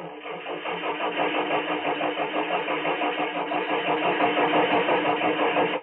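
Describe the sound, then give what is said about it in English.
A car engine cranks over and over in a steady, rapid chugging rhythm for several seconds without catching, loud, with no voices. “I rented a car and drove all over town to make sure everything was in perfect running condition”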